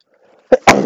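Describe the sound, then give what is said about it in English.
A single loud sneeze: a faint breathy intake, a short sharp catch, then a forceful explosive burst that trails off with a rough, noisy tail. “About to sneeze.”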